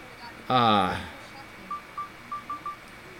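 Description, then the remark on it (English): A quick series of five short, evenly pitched mobile phone keypad beeps, fairly soft and close together, following a brief louder tonal burst at the start, as the sound on the phone is being turned off. “I'm going to turn the sound off on my phone.”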